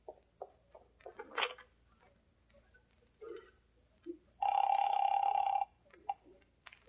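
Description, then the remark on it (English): A telephone rings once in a steady electronic tone lasting about a second, preceded by scattered clicks and clunks like a receiver being handled and dialed, on a phone in the back of a store. “And now can I use your phone, sweet star?”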